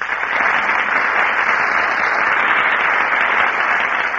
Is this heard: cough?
no